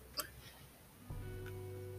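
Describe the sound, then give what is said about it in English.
A brief click, then a low, droning burp that starts abruptly and holds steady for nearly a second, deep and rumbling with a buzzy, tonal quality. No one speaks. “Excuse me, I burped at time.”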